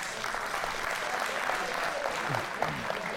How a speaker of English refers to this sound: There it is, my man in the back. All right, give him a round of applause.